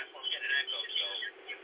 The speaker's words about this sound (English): Yeah, I got to shut that down, yeah. I'm getting an echo, so I'm going to ruin my whole podcast with doing that.